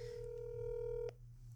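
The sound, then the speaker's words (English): A telephone tone sounds as a call is placed: one steady electronic beep held for about a second, cut off by a sharp click, with a low background hum throughout. “All right, you ready for another phone call? Sure. Let's do another phone call. All right, here we go.”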